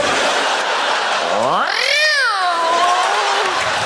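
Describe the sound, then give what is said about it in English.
A person imitates a cat with one long, drawn-out meow that rises in pitch and then slowly falls away, heard clearly over a steady background hum of crowd noise. “Kitty wants some candy.”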